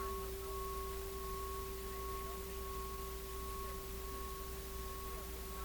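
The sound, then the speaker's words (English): A soft, sustained bell tone hums steadily throughout, two clear pitches ringing together without fading, like a singing bowl held in resonance over faint background hiss. “You know, you hear the bell.”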